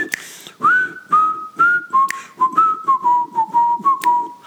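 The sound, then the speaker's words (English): A person whistles a simple, bouncy melody, the notes rising and falling in short phrases with brief pauses between them, and no one speaking. “Don't worry about my shit singing and my cacks whistling.”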